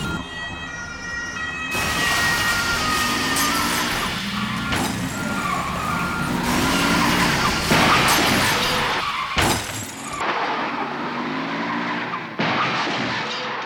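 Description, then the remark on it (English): Wailing sirens give way to screeching, skidding tires and a loud crash of two ambulances driving into each other and exploding, with glass shattering, the chaotic noise continuing for several seconds with no talking. “Please plan to take alternate routes as two ambulances just drove into each other and exploded at this one.”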